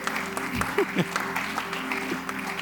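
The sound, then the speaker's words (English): A crowd claps together in a dense, continuous burst of applause that fills the space, giving the Lord a clap of praise, with a few raised voices and shouts mixed into the clapping. “Give the Lord a clap of”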